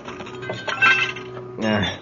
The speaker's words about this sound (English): Watch out for the glass. You want me to go first, sir? Wait till I knock these sharp splinters loose.